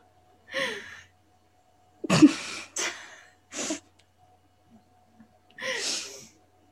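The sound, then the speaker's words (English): Wet, congested sniffling through a runny nose: five short, breathy snuffles in an uneven rhythm, a couple bunched together, separated by quiet pauses, with no talking. “I got the sniffles.”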